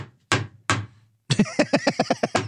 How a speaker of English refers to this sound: That's a new segment. The clipboard slamming.